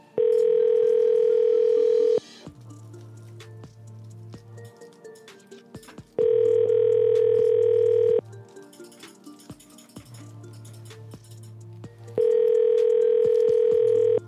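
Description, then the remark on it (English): A phone line ringing out while calling a man's phone from his own number: three steady electronic ringback tones, each about two seconds long, separated by longer pauses filled with faint background noise and a low hum. “Right now, he's wondering why his own phone number's calling him.”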